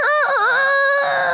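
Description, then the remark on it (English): A person's voice imitates a rooster's crow: one loud, strained call that wavers briefly at the start, then holds a long, steady, wailing note. “And it wasn't 15 minutes, and that rooster starts.”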